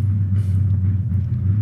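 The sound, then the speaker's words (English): A neighbor's powerful race car engine is revved, rumbling loudly in a deep, steady low-pitched drone that holds even for the whole moment without any voices. “That's the loudest fucking car I've ever heard.”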